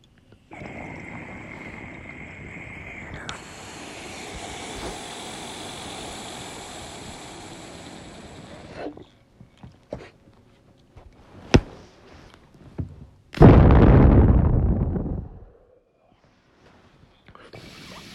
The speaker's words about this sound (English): Let me take this dab here right quick. Hold on 1 second. As soon as I take this dab hit, we're taking a tropical thunder indica strain. Cheers.